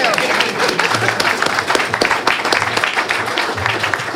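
An audience applauds its panel guests steadily, many hands clapping in a dense, continuous wash of sound that holds at a fairly loud, even level throughout.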